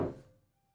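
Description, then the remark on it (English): One dull, solid thud against a heavy solid wood door with bars over a small slat, fairly loud, its low resonance dying away quickly into quiet. No voices. “a solid wood door at the end with the bars over a small little slat, and there's a Xavier Knox”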